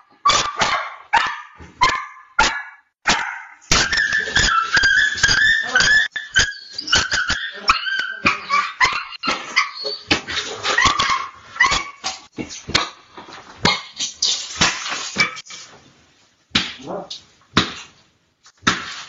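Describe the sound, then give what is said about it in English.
A dog yelps and cries repeatedly in sharp, frantic bursts as it is beaten with sticks in China by two people in biohazard suits, interspersed with sharp impact-like cracks and commotion, loud throughout, with a brief pause before the yelping resumes. “If you test positive in China, this is absolute fact, you are forced to go to a camp and the CCP will beat your dog to death with sticks.”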